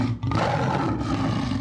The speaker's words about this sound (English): Some of them even hopped on a plane to Bangkok. Because they got a zoo there. To record the sound of a tiger growling.